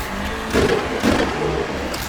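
car engine revving

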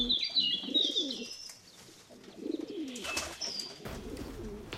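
pigeons cooing

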